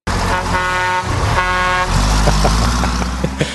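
A truck horn honks twice in quick succession, loud, then a heavy engine rumbles as the vehicle rolls off, with a few clunks and rattles.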